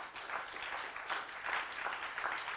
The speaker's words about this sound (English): How many believe that? Would you clap your hands to him?